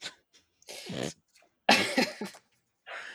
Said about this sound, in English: Oh, puppy's barking. I heard him. Little man.